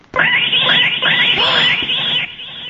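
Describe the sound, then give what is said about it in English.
A cat screeches loudly from up on a roof, one harsh, wavering yowl that rises and falls for about two seconds before cutting off, with no voices around it. “And then she heard a loud screech like a rocket going off. Only it wasn't quite like a rocket. It was more like a cat.”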